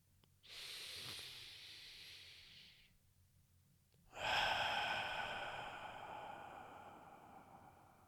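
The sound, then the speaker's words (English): A slow, deep, intentional breath drawn in through the mouth for a couple of seconds, a short pause, then a long, full exhale that fades gradually. Clear, with no talking. “And so again, the type of breathing I'm talking about today is deep, intentional breathing.”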